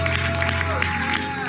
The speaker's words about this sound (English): Clap your hands.